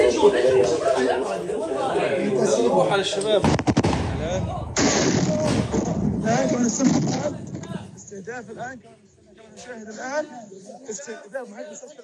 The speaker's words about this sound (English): Attacks have also been carried out on the Indonesian hospital north of Gaza City. This is footage of an explosion near the health center.